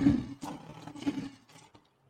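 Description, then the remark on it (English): A lion's roar sound effect played to celebrate a Detroit Lions football player, one rough, throaty growl lasting under two seconds that swells loudly at the start and fades out in a few ragged bursts, with no voices over it. “And let's give him a big lion roll.”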